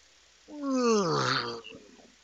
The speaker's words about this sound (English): That was my best fake yawn.